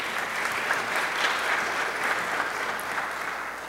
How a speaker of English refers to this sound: Thank you so much. That was a beautiful job. She deserves another hand clap, don't you think so?